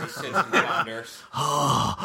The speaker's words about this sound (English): Heavy breathing into the mic.